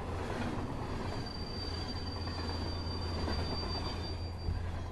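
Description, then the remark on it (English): Train wheels rumble steadily along the rails while a thin, sustained metallic screech rides over the top, continuous for the whole stretch, with no voices. “The clack-clacking of the rails, the rocking back and forth, the screech of wheels as the train navigates a corner, the groaning as it comes to a halt at the station, the momentum as it leaves.”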